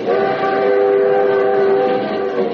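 A moving passenger train, the limited, gives a steady, loud rumble on the rails, with sustained horn-like tones holding throughout. No one speaks.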